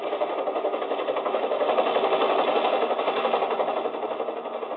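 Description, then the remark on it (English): A helicopter drones steadily overhead at night near San Borja, its engine roar carrying a fast, rhythmic rotor chatter that holds loud and constant throughout, with no voices. “Well, the fields in San Borja make it tough for a plane, but for a helicopter, that's another thing.”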